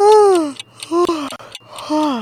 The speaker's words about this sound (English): Oh, sorry. Well, now that I've yawned, you might be yawning too, right?